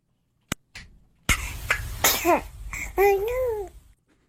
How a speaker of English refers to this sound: So what is that? I understand that's viral, that has gone viral? Yes, that is a baby sneezing and then saying, oh no. Wow. That is very cute. It's adorable.